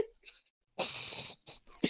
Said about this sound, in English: Go ahead, sneeze.